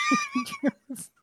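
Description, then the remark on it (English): A person imitates a cat with about four short, quick meows in a row, fairly loud, with brief pauses between them. “And Billy is, meow, you know. Meow, meow, meow.”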